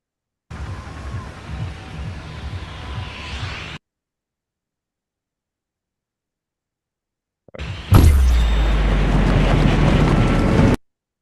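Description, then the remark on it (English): Fortnite gameplay sounds: a steady, airy whoosh of wind for about three seconds, a pause of silence, then a sharp thump that gives way to a louder, rumbling roar. No voices. “Anna? Fortnite. Correct. That was Fortnite?”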